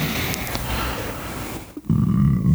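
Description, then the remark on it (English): A long, loud burp, a low guttural belch that briefly breaks off and then swells back up for a final drawn-out stretch. “I'll be honest, anytime you burp or fart, there's a solid 5 seconds where I'm afraid I'm about to die.”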